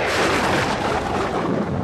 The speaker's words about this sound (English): Suddenly, a violent storm blew up,